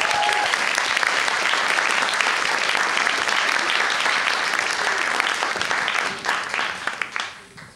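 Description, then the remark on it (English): Loud, dense applause from an audience greeting the next speaker, a steady wash of many clapping hands that holds for about six seconds, then thins out into scattered claps and fades away. “With that, should we give a massive round of applause”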